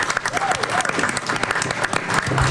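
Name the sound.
audience applause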